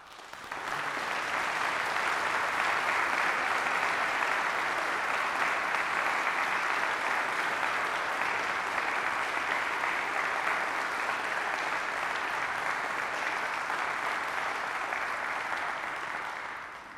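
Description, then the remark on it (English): A crowd applauds steadily for about sixteen seconds, a dense, even wash of clapping that fades in quickly, holds at a constant loudness, and tapers slightly at the end, with no voices. “Everybody claps for love.”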